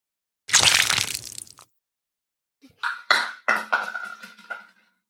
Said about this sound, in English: No, I just knocked the bottle off the table.